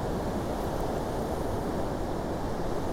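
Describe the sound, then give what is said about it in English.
Ocean surf rolls in steadily at Ben Buckler on a grey, overcast day while wind buffets the microphone, a continuous broad roar with no distinct breaks between waves and no one speaking. “The sun is really working its butt off to get through the clouds, and the picture in front of me out here off the ocean right now is just inconceivably beautiful.”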